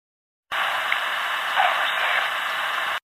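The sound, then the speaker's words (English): An EVP recording said to hold a ghost voice: a steady, fairly loud wash of radio-like static hiss starts abruptly, runs about two and a half seconds with a slight swell midway, then cuts off. No clear voice stands out through the noise. “Well, maybe that's what this EVP is.”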